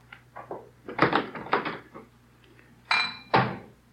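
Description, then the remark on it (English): Dishes and cutlery clatter and clink in a quick, irregular run of knocks as dishes are cleaned up in a messy kitchen, followed by two brighter ringing clinks, with a low steady hum underneath and no one talking. “Dishes all over the place.”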